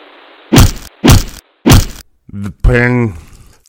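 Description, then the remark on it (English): Three heavy, evenly spaced hammer blows crack out over a faint hiss in a hotel, each a sharp, loud strike. A strained vocal groan rises right after the last hit. “The hammer. Where's the hammer? There you are.”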